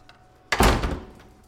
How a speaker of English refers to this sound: Okay, fine, you can come back in. No, the door just closed and you already went out again?